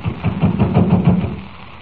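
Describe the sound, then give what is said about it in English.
A rapid series of dull, low knocks on a locked stage door, about half a dozen in an even rhythm, then fading into a soft background hiss. “Well, just keep knocking till someone does answer.”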